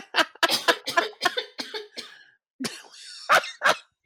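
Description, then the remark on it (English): A loud fit of harsh coughing from a person who is still a little sick: a rapid string of about seven or eight coughs, a brief pause, then a few more raspy coughs. “I say as I start coughing.”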